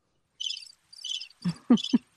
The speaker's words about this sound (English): Crickets. I think it's a squeaky wheel. It's crickets.